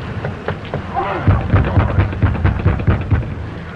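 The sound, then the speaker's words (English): A rapid series of heavy, dull knocks on the door of an old dark house by travelers seeking shelter, about four per second in a steady rhythm, over a constant roar of rain and storm noise. “They knock on the door.”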